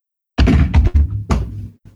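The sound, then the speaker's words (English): A kitten knocks over a water bottle: a quick burst of loud hollow thuds and clunks, then a softer final bump as it settles. No one speaks. “That was a lot of noise, just picking up a little kitten. Mine knocked over a water bottle, too.”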